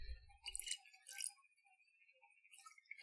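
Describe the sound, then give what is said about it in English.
Gin is poured into a glass, a quiet trickle with a thin ringing tone that creeps upward in pitch, broken by a couple of brief splashy clinks near the start. No one speaks. “pouring ASMR.”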